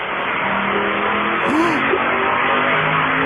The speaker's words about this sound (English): That was a dyno run.